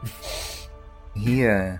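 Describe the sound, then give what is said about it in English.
A close, breathy sniff drawn in through the nose, made by a voice acting out a character getting uncomfortably close and sniffing another character, then a pause and a drawn-out, wavering vocal murmur. “Zerkak is going to get uncomfortably close and just start sniffing Henrik.”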